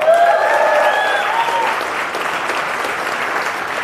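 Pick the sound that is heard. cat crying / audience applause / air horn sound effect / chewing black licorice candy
audience applause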